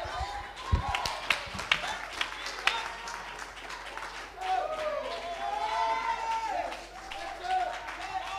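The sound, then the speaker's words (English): An audience claps hands in a dense, steady patter of many overlapping claps, with a crowd's voices rising and swelling underneath, some sounding like cheering. “Come on, someone clap their hands just a little longer right now.”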